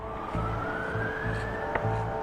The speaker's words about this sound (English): The offensive appears to stretch across the entire country, with explosions and air raid sirens heard in major cities, including the capital of Kyiv.